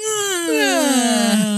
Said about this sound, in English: she's moving like she's just woken up. Just letting a little yawn out.